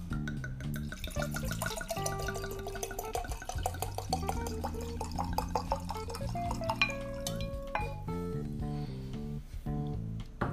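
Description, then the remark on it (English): Sweet Moscato dessert wine pours steadily into a glass for about ten seconds, a continuous splashing and gurgling with a bright, ringing tonal quality and no talking. “So the rule is I don't try it until we start recording, so here goes the first sip. Well, the first pour, I should say.”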